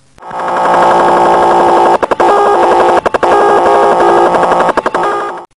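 An encrypted shortwave radio signal known as the Japanese Slot Machine chatters loudly and continuously, a rapid warbling clatter of tones that cuts out briefly a few times before resuming, with no voices.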